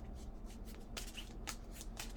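A deck of affirmation cards being shuffled, with a run of quick papery riffles and flutters over about two seconds. No one speaks.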